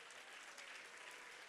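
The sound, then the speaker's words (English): An audience claps hands together in a dense, steady burst of applause that fills the whole moment, with no distinct shouts standing out above the clapping. “Would you clap your hands and shout?”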